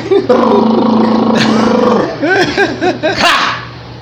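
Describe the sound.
A voice hums a steady, buzzy low drone for about two seconds, imitating an engine, then breaks into a few short vocal bursts that rise and fall in pitch.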